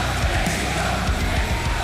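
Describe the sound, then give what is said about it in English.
A large crowd in a wrestling arena roars and yells continuously during a championship match between Hangman Adam Page and Danielson, about an hour in. A dense, sustained wall of cheering voices with scattered louder shouts rising out of the din, steady and loud throughout. “Listen to our compassionate crowd here.”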